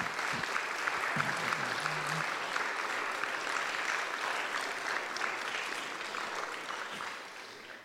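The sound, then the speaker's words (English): Sustained applause from an audience for the storytellers at a storytelling event, a dense steady wash of many hands clapping that holds strong throughout and begins to taper off near the end, with a brief vocal sound early on. “Can we give one more round of applause for everybody?”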